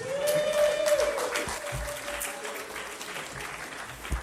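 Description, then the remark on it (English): A crowd claps in steady, dense applause for a man at the back of the room, holding at a fairly even level throughout, with a faint tonal whine sliding through the sound early on. “Well, you can give a round of applause”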